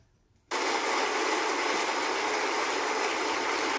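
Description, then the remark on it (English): A YouTube studio-audience applause sound effect that comes across more like rain: a dense, steady hiss of pattering that cuts in abruptly after a brief quiet moment and holds at constant loudness, with no voices. “I ain't gonna lie, that sounds like rain. That don't even sound like applause.”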